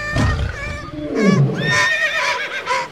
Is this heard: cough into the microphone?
no